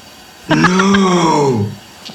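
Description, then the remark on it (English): A single drawn-out moaning howl from a peacock, rising slightly and then sagging in pitch over about a second, rich and nasal, then trailing off with a faint short sound after. “She was on site and heard the peacocks moaning.”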